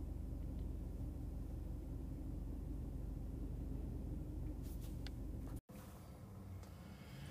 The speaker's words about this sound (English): It's already starting to get bright outside. There's increasing traffic and definitely more woke birds out there.